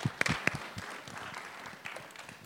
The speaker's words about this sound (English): Let's just give her a round of applause as she comes up.